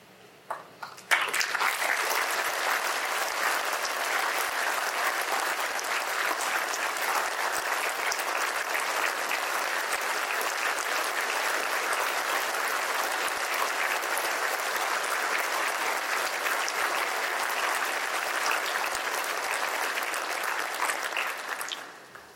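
Sustained applause from a sizable Farm Bureau audience in Missouri as the governor comes forward to receive its highest honor, starting abruptly after a couple of scattered claps and holding steady and dense for about twenty seconds before cutting off.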